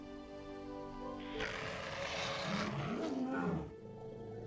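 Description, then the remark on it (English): The Red Lion Zord, a robotic lion, lets out a single loud, harsh roar lasting a couple of seconds. It rises over a steady electronic hum that continues before and after it. No one speaks. “Red Lion, speak to me.”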